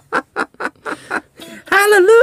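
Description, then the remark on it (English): A person imitates a bird's squawk: five quick, choppy squawks in a steady rhythm, then a longer, louder strained cry that wavers in pitch. “Squawk, hallelujah!”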